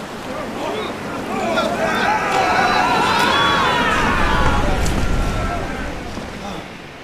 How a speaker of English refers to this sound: Cain bellowed over the voluminous undulation of the waves.